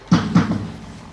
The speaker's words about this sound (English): I think you should knock on the door.